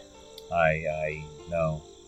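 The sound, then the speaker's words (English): A steady, high-pitched cricket trill hums continuously on a calm night by lakes, while two brief voice-like vocal sounds rise over it. “You hear the sound of crickets as they chirp in the nearby lakes.”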